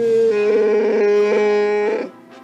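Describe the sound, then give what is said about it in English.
A loud, sustained Wookiee growl of pleasure from Chewie as Princess Leia presents him with a reward for his bravery, a throaty, tonal moan that wavers slightly for about two seconds before cutting off. It is heard alone, with no talking. “Chewie gave a growl of pleasure when Princess Leia presented him with a reward for his bravery.”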